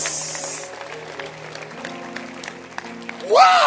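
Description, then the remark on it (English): An audience claps steadily throughout, a dense patter of many hands at moderate volume, with a voice breaking in loudly over the applause near the end. “Let's clap.”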